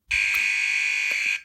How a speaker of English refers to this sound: And that's the buzzer. That's time for today.